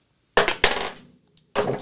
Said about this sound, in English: How do you keep missing your dice box? It just bounces out.